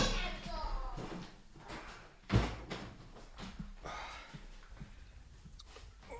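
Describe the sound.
A single firm thud of a closet door shutting, fairly loud, with muffled voices and household noise before and after.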